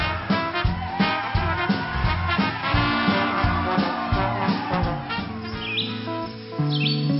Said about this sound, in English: Do you ever like... go for a walk on a beautiful spring day like this one, when the birds are singing in the clear blue sky and the blossoms adorn the trees in a beautiful blush veil.